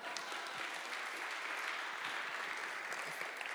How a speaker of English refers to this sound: So now if I could have a massive round of applause for our very own Gandalf,